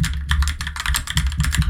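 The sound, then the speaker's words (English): Rapid, loud clacking of a mechanical keyboard being typed on, keystrokes tumbling in a quick, uneven rhythm with a deep thock under each press; no one speaks. “If you can hear my very, very loud and audible mechanical keyboard.”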